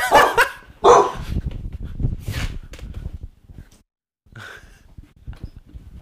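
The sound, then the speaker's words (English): A dog barks loudly at its own reflection in a mirror, two sharp barks in quick succession, followed by softer grumbling and yipping sounds, then a brief pause before a few quieter noises. “He's literally barking at him.”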